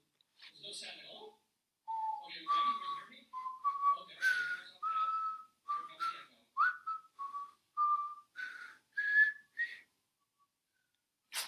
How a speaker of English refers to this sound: I hear the whistling, and I ain't just whistling Dixie. I'm whistling Auld Lang Syne for the end of the year.